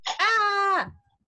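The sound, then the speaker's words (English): A single throat clearing: a short rough burst, then a sustained voiced hum that drops in pitch and fades, lasting about a second with no speech. “No, I just had to clear my throat for a second there.”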